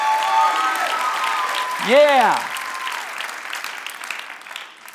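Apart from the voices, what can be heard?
audience applause and cheering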